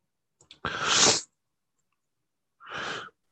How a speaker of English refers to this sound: Oh, I'm gonna sneeze. Excuse me.